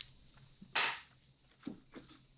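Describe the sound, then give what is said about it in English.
Someone bites into a sandwich with mayo, salt and pepper and crisps in the middle, with one loud, sharp crunch, followed by two softer crunchy chews a moment later. No one speaks. “I'm putting a sort of a Red Sea crisps in the middle. I'm going to eat.”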